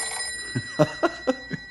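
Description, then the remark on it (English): An old-style telephone bell at a ranger headquarters rings in a rapid series of metallic strikes, about five quick clangs in a row, fairly loud with no one talking. “It's only the phone.”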